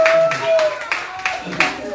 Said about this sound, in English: Let's clap for him.